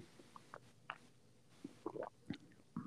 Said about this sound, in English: I can even hear you swallowing.